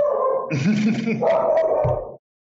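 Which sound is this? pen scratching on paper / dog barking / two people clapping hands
dog barking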